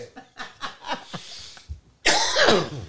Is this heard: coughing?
yes